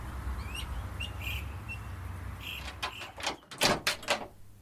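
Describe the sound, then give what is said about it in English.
A door opens in Seattle with a series of loud, sharp clattering bursts toward the end, over a steady low hum and a few faint high chirps earlier on; no one speaks. “As the door opens, Mark sees a man dressed in leather, dripping wet and breathing hard.”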